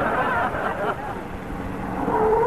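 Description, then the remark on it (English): A car engine rumbles as the vehicle pulls up at a ranch, ending in a drawn-out squealing whine as it comes to a stop, with faint background noise throughout. “Say, Costello, who's that getting out of that car?”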